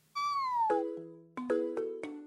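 A cat gives one clear meow that slides downward in pitch, followed by a quick run of five bright, chime-like notes. Fairly loud, with no talking.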